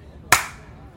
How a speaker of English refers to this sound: I'm clapping. We did a good job. Oh, okay. That's right. I'll clap as well then.